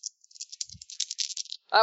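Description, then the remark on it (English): Two hard dice rattle and clatter in a rapid burst of small clicking hits for over a second, followed by a brief voice at the end. “You can just roll the dice.”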